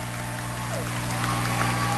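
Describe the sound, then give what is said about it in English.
A crowd at a basketball game gives a standing ovation to Northfield third graders heading off the floor after a halftime performance, in a steady, dense wash of clapping that holds for the whole stretch, with a low constant hum beneath it. “And now the crowd giving them a standing ovation as they head off the floor.”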